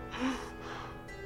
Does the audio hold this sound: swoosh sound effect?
no